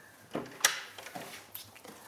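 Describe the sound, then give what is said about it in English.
A linen cupboard door is unlocked and opened: a few sharp metallic clicks, one especially crisp, followed by softer knocks and a brief scrape as the door swings, with no talking. “Let's unlock the door. See what treasures you've got in here.”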